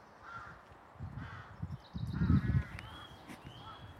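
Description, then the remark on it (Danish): A rook colony cawing, with many harsh, overlapping calls in irregular bursts that swell louder midway, plus a few thinner higher cries layered over the chorus. “Vi har rågekolonien.”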